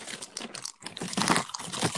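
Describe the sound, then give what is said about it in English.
Loud, dry crunching of Apple Jacks breakfast cereal being chewed, a rapid series of crisp, crackly bursts with a brief pause partway through, no voices. “Are you eating more Apple Jacks?”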